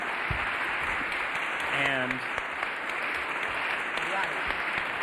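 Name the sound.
round of applause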